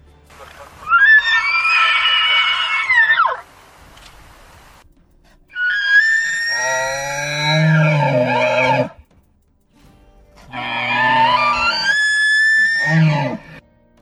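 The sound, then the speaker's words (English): Three long, shrill bugling calls from a wild elk, each rising into a high, wavering whistle with lower grunting undertones, separated by brief pauses and sounding loud. “Here's what a wild elk call sounds like, in case you've never heard one.”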